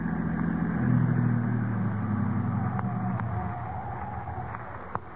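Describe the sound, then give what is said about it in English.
A car engine rumbles as the vehicle is driven off the road to park, its pitch rising and shifting before the motor eases down, with a few sharp clicks and bumps near the end. “I'll drive the car off the road.”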